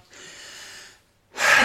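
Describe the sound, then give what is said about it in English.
A speaker takes a big, wheezy breath into the microphone: a drawn-out, airy inhale, a brief pause, then a shorter, louder, harsher exhale. No one speaks. “Big breath. Wheezy.”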